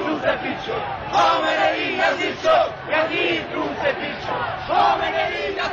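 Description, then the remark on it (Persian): A large crowd of protesters, beating their chests, chants protest slogans against the election result in unison, voices rising and falling in loud rhythmic bursts with a constant roar of many people underneath. “مردم سینه می‌زنند و شعارهای اعتراضی سر می‌دهند.”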